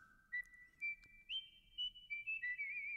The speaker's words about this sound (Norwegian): Kjør den vanlige jingeren vår. Plystringen, tenker du på? Ja.